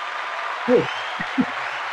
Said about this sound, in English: Just beat this cancer. And that's what I did. Seven surgeries total. So that was, it was pretty fun. Absolutely. I get you a round of applause for that.